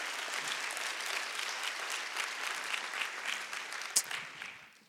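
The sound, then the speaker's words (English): An audience claps steadily in a dense, sustained round of applause for the staff of a School of Education, with one sharp louder clap near the end before the clapping thins out and fades away. “Let's give them another round of applause for the work that they're doing.”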